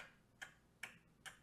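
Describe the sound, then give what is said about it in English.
A metronome ticks three times at a steady, even pace, each click sharp and crisp, with quiet background noise between the beats and no voices. “Oh, it's almost like a clock. Metronome.”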